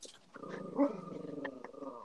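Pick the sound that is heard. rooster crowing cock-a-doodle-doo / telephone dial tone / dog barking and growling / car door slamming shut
dog barking and growling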